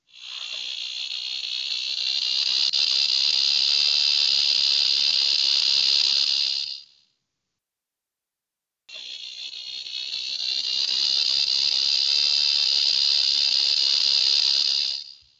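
cicada buzzing

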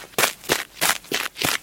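gunshot

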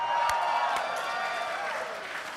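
audience cheering and applause

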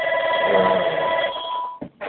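telephone ringing

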